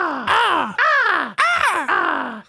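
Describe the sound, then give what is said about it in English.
A man imitates crow caws while beatboxing: four loud, harsh, nasal "caw" calls in quick succession, each sliding downward in pitch, with no other sounds. “Then proceeded to make three crow noises in approximately this.”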